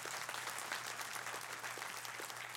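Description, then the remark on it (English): An audience gives a man a big hand, clapping steadily in a dense, even wash of many hands applauding without pause, with a faint low hum running beneath it. “Give him a big hand.”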